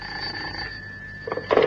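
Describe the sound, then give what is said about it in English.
A telephone bell rings with one long, steady, high-pitched tone that slowly fades, followed by a couple of brief clattering knocks at the end. “And then the telephone rang.”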